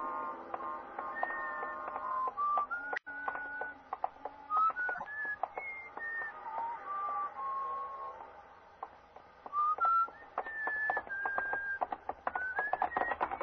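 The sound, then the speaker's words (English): Someone whistles a wandering, unhurried tune while walking along a street late at night, one clear note sliding into the next, over a steady background of sharp clicks and taps. No one speaks. “I was on my day off and sort of late at night, and I was just walking along the street, not going anywhere in particular or even thinking anything much, just sort of whistling to myself and walking along the street.”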